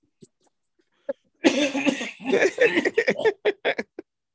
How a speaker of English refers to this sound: Smoker's cough, goddamn it. Allegedly smoker's cough. Yes, allegedly. Wait, hold on. No, it's legal. I keep forgetting it's legal out there? It definitely is smoker's cough. Okay, so not allegedly? Not allegedly.